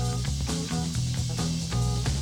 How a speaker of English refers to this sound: It could be a bass and keyboard noodle off.